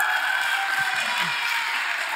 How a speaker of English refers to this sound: All right, just hang out with me and everybody clap for them because they don't want to be up here.